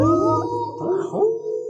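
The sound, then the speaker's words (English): Several wolves howl together in long, wavering tones that slide up and down and overlap, sounding distant and hollow, with no talking over them. “Wouldn't want to be surrounded by wolves, eh?”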